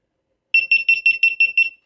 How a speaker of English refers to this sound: It's a bomb. So, no, I was turning my GoPro off and it beeps a lot.